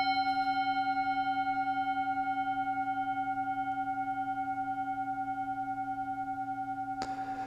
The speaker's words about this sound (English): the sound of this bell